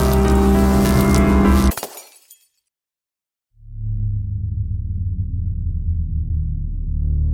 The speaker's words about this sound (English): The power surged hard and suddenly everything burnt out. The light bulbs and the lamps exploded in a hail of sparks. I could hear the fizzing and popping of cooling circuits and wires.